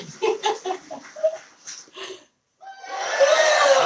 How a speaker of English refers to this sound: And the crowd goes wild. Where that crowd at?